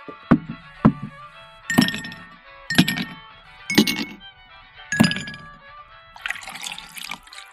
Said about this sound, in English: Pouring yourself a water. I'm not a drinker.